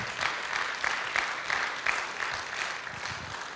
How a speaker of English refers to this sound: Come on, can we give him a good round of applause?